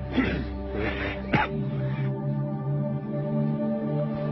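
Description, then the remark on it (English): A person loudly imitates a lion's roar, a rough growling burst in the first two seconds that settles into a long, rumbling, sustained roar. “That is an exceptional lion, yeah.”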